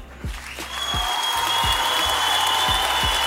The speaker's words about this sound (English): Round of applause for that man.